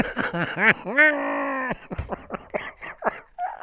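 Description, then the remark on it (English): A voice performs heavy, breathy groans: a few short rising moans, one long drawn-out moan, then a run of quick, choppy voiced pants. “Keep breathing like that.”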